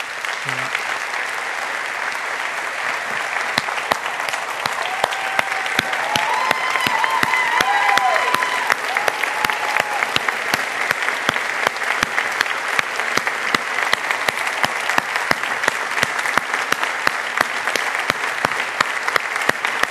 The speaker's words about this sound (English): I'm going to ask you if you would, and hold your applause on this because we're just going to introduce and then we want to get into our sharing with them.